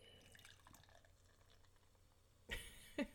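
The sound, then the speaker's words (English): Beer pours into a glass in a quiet trickle, followed near the end by two brief, sharper splashes or clinks. “Okay, I'm going to read those again while I pour my beer.”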